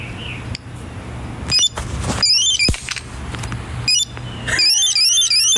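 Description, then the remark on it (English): A shrill, warbling alarm from a small anti-theft device sweeps up and down in pitch, stuttering on and off as several sharp, heavy hammer blows strike the device between bursts, with a steady low hum underneath. “You're listening to the death of an anti-theft device with a hammer.”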